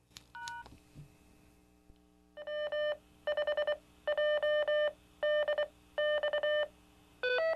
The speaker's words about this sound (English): you heard my ID, W5JDX and CW, followed by two tones there, a low tone and a high tone